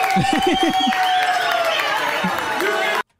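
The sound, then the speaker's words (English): A dense wash of audience applause and crowd noise from a played video, steady and fairly loud, with voices mixed in and a faint sustained tone running underneath before it cuts off abruptly. “Oh, she's golf clapping.”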